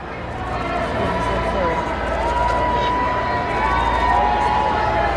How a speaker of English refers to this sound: As King Charles pulled up to the church, he was met with a wall of cheers, but also booing and chanting.